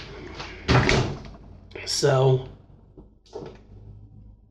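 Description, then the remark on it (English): A dishwasher starting up: a loud clunk, then a second bumping, rattling thud a moment later, followed by quieter low sounds. A person says a word partway through. “there, dishwasher started.”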